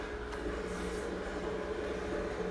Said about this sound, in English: oh my gosh, do you all hear that? That's my washing machine. My goodness.